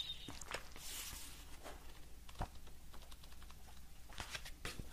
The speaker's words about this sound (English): Which paper sound do you enjoy the most?